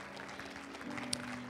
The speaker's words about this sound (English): Come on, give the Lord a hand clap. Amen. You appreciate this worship team? Give them a hand clap. Amen.